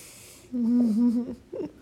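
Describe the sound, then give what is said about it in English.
A voice imitates a snoring sheep with a drawn-out, wavering nasal drone lasting about a second, followed by a shorter second snort-like sound, moderately loud. “Do you think sheep snore?”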